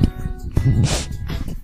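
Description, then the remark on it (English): Two short, breathy sniffs, one right after the other, each a quick hissing intake of air, with a low vocal murmur underneath. “I'll hold off for the sniff.”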